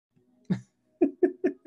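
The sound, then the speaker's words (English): A single harsh cough, a short pause, then a quick run of four more coughs in an even rhythm, each one a loud, rough burst with no talking in between. “Well, that was, listeners, that's a big cough. Oh, multiple coughs.”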